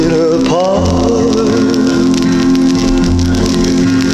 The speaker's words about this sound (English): I like the crackling on the vinyl. Right? That's a nice touch. Look at this record. That's off the nice. That's in pretty bad shape. That's the RCA Victor.